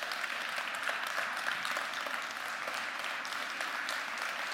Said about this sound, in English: Let's stand and give Him applause today.